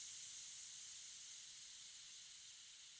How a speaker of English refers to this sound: As the scientist walked quickly back toward his dormitory, trying to seem unperturbed, the hissing began to take form in his ears. "Not safe," it seemed to say. "Not safe."